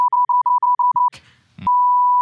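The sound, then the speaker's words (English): A censor bleep tone used to blank out a person's name: a quick run of about nine short, even, high-pitched beeps, a brief scratchy burst of noise, then one long, steady, loud bleep held to the end. “His name's just every time he says it, I'm just going to blank it out. Just like his name is beep.”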